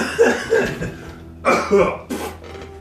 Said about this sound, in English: Ooh, man, I cut one. Well, dang, chili just hit me. Like I coughed and cut one at the same time. That terrible sound of coughing and tuba.